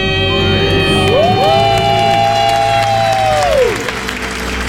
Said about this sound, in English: Listen, you heard it in their voices. That was a debt-free scream if I ever heard one.